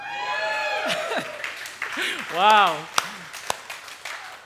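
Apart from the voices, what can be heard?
audience clapping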